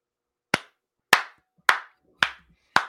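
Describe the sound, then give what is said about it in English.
A slow, polite golf clap: five separate hand claps spaced evenly about half a second apart, each sharp and crisp with a quick fade, with silence between them and no voices. “Golf clap for you.”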